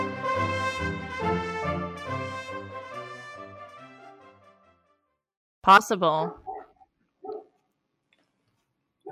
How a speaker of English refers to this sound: Barking outside.